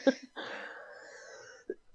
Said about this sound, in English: She's got a snoring problem.